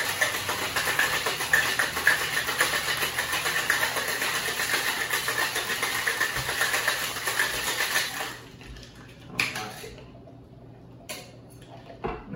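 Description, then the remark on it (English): Ice cubes rattle hard inside a cocktail shaker holding a drink with black pepper, a fast, steady, bright clatter for about eight seconds, then stops, leaving a few faint clinks and knocks. “Go ahead, give this a good shake.”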